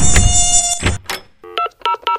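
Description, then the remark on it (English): A loud, high-pitched mosquito whine drones for about a second, then gives way to a quick series of short electronic beeps like phone buttons being pressed. “Can you come spray my yard for mosquitoes?”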